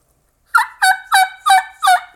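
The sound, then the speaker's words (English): A reed turkey call whose reeds have not been separated, so the reed does not vibrate to make a rasp, played dry: five quick, evenly spaced yelps, each a clear high-pitched note lacking any raspy buzz, sounding thin and squeaky with no talking. “You can hear that high pitch. The reed's just not vibrating to get that rasp, so it's just all high pitch stuff.”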